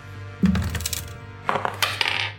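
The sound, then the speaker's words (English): Dice clatter across a tabletop in two bursts, a sharp tumble and then a longer rattling roll that settles, fairly loud over a low background hum. No one speaks. “I'm going to roll a d12, and I'll still win.”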